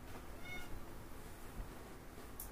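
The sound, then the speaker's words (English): A female cat that is still healing gives a short, soft meow early on, faint against a steady low background hum, with no one talking. “This is Alley Cat. So anyone who donated money or who bought a donation ticket for this event today, this is Alley Cat.”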